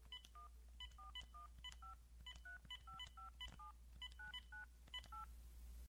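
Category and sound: signal or alarm, telephone number being dialed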